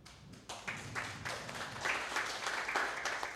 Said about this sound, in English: And I appreciate, I think the applause is awesome, but if we could just have it at the end or after everyone's done talking, that would be great, and speed the podcast.